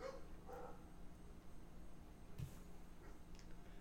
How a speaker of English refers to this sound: There's dogs barking. We got you can surely hear this. Barking in the neighborhood.